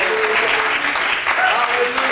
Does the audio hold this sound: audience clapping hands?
yes